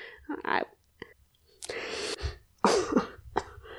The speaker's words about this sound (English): She's crying right now. No, I'm coughing. I'm coughing.